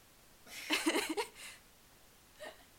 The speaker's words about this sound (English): I need to burp. Hold on.